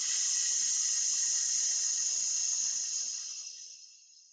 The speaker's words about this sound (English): So again, in for 3. Out for 6 and hiss out this time.